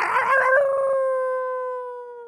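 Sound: wolf howling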